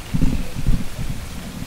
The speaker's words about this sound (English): It's raining hard here on Degobah. Oh. Soaked.